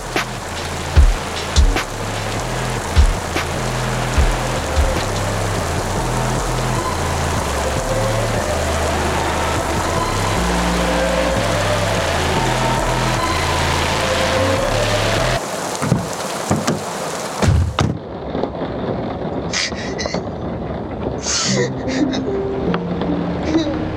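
rain falling

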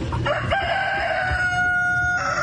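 rooster crowing

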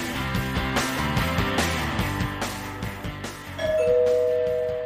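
doorbell ringing

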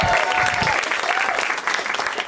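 audience clapping

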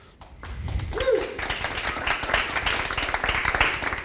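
audience clapping and applause

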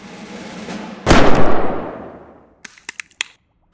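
gunshot

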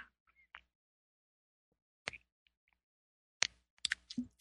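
sipping a drink

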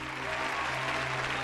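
crowd applause

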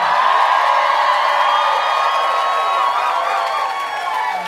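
concert crowd cheering

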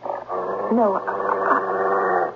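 dog barking and whimpering

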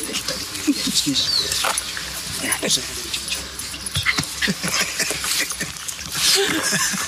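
dog whimpering

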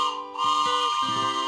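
train whistle

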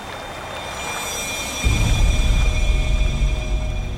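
flowing river water

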